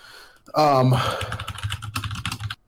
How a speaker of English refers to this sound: Goes our mechanical keyboard again. Yep, two more on the way.